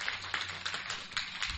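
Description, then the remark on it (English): A church audience claps together in praise to God in a dense, steady wash of many overlapping hand claps, loud and continuous with bright crackling texture and small rhythmic surges, no voices standing out. “I thought we'd clap for Lord.”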